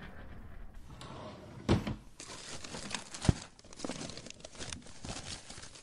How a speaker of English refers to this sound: Let's have a look-see in the drawers.